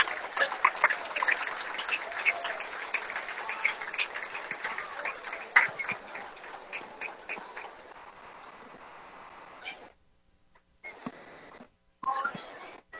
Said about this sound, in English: Congratulations again on your outstanding high school athletic careers and on tonight's induction into the Wilson High School Athletic Hall of Fame. Fans, let's give the three former Golden Rockets a great round of applause.